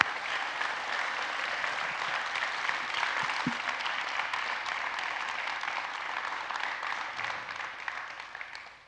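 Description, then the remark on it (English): Steady applause from a large crowd, a dense wash of many hands clapping at an even level for about nine seconds before tapering slightly at the end, with no one speaking. “Let's give Dave another round of applause.”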